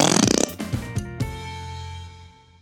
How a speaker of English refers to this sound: You fill the bag with air and put it on someone's chair. When they sit down on the whoopee cushion, it makes a sound like a fart.